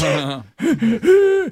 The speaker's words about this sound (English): That, is that him breathing or was that the cue for him to breathe? I think that was the cue. Yeah. No, that was him breathing. Was it? Him going, yeah, trying to breathe.